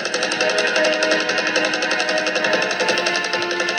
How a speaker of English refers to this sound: I also love him on the bed as it's vibrating, trying to eat the pizza.